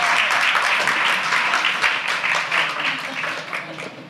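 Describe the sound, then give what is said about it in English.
An audience applauds as a woman comes up to the microphone to ask a question, a dense wash of many overlapping hand claps that holds loud for about four seconds before easing slightly at the end. No one speaks. “While she addresses, let's applause her up. Let's clap her in.”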